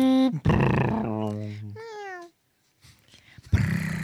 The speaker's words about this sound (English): Those are just our cat sounds.